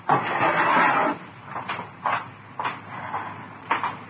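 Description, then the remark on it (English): A drawer slides open with a long wooden scrape, followed by a handful of light knocks and clatters as objects inside are shuffled around while someone fetches a hammer from it, with no voices. “Here, Lil, get me that hammer out of the drawer.”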